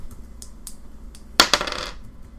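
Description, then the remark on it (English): A single die, rolled for an athletics plus dexterity check in a game, clatters onto a hard tabletop, a few light taps, then two sharp hits and a brief rattling tumble that quickly settles. No one speaks. “No, it's just a single dice from the minus one.”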